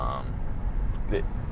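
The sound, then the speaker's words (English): A car drives through heavy traffic and moves over a lane, its steady low engine and road rumble filling the short stretch, with a brief muffled voice-like sound rising near the end. “Wait, I don't know why there's so much traffic. We're just going to move over a lane so we don't have to deal with unexpected mergers, because I hate that shit.”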